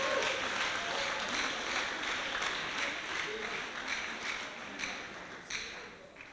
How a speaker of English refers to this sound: Can we clap for the Lord?